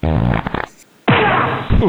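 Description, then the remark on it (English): A loud, juicy fart rips out, a wet sputtering blast, then after a brief pause a second long, messy, bubbling fart follows. “That's a really juicy fart.”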